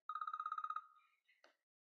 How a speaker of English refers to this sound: Sorry, alarm.